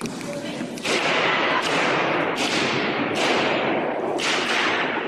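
Five loud, harsh smashing blows land at uneven intervals, each a sharp crack that rings and decays into a dense wash of noise, as a frame is smashed apart.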